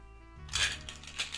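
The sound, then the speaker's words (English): A full set of Dungeons & Dragons multiple-sided dice clatter and rattle together in a quick series of bright, clicky bursts, fairly quiet and with no voices. “Hear that? I bought Dungeons & Dragons multiple-sided dice, like an entire set.”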